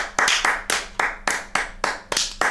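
Steady, rhythmic clapping: about eight sharp, bright bursts in an even beat, like a small group applauding in time, with no voices.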